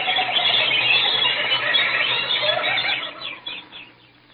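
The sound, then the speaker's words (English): A dense, continuous chorus of high, shrill bird calls and squeals, loud, thinning out into scattered chirps near the end. “The birds.”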